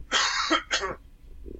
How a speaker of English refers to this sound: Sorry, one second while I clear my throat.